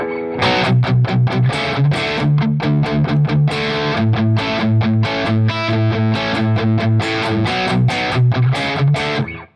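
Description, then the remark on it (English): An electric guitar played through an amp on its low-gain side with the drive turned up a little, light overdrive, strummed chords and picked notes in a steady rhythm, loud with a slightly gritty edge, no talking. “So let me turn up the drive a little bit. This is still the low gain side.”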